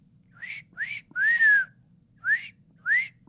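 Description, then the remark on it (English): A voice imitates an eerie whistle heard up in the trees: five rising, wavering whistled notes, the middle one longer and sliding, spaced unevenly with brief pauses, alone over a faint low hum. “Whistling? Yeah, up in the trees.”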